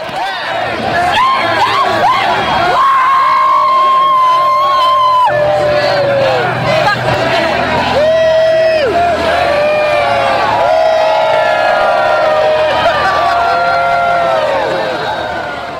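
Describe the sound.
A big stadium crowd of Seattle Seahawks fans at CenturyLink Field cheers and roars continuously, layered with whoops, chants and sustained shouts rising and falling over a dense, loud wash of voices.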